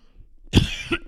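A man coughs and clears his throat in a quick, rough burst of two or three harsh hacks, fairly loud, with no talking.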